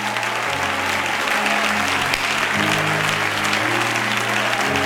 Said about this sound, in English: I wish somebody let whoever's watching hear these applause.